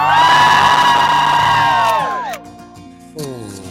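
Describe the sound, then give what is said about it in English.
A large outdoor crowd on the Today show plaza in New York on a Wednesday morning cheers and whoops loudly for about two seconds, many sustained high voices blending together, then fades before a shorter burst of cheering rises again near the end. “It's a great crowd every day.”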